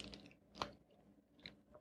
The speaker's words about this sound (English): I had to take a sip.